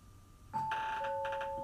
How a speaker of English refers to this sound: Hit the doorbell.